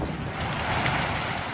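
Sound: boat on water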